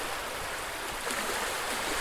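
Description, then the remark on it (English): Gentle sea waves wash in a steady, soft hiss of moving water, continuous and even with a slight swell, heard alone without any voices. “You are listening to the relaxing sounds of gentle sea waves, Soundscape for sleep.”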